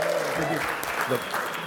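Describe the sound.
A crowd claps in a steady, dense wash of applause, with a few voices calling out over the clapping throughout.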